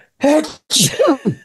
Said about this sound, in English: Sorry. That sounded like the word achoo. That was weird.